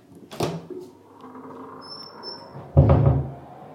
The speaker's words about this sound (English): Okay, so I'm going to go into the bathroom now, and you will hear the lights come on and you will hear the fan come on. I'm not going to make you listen to it for very long. So here we go. Wonderfully creaky door.